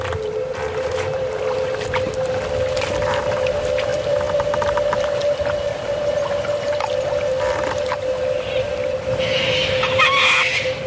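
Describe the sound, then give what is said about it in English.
A sonification of Murray River flow data, with inflows from tributaries such as the Murrumbidgee, Edward and Goulburn, pitch high where flow is fast: a steady, unbroken mid-pitched tone hums over a continuous rushing wash of noise, dotted with faint clicks, with a brighter hiss swelling near the end. “At the sonification, it brings that process alive as they flow in.”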